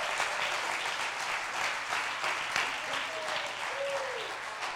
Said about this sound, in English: But let's have revival till Jesus comes. I'll clap your hands and let's praise God.